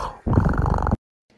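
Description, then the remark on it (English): A person imitates a cat with a single rough, rumbling purr-like growl, held loud for under a second before cutting off into silence with a faint trailing murmur. “I liked the purrs at the end. I feel like it really sold it as a cat.”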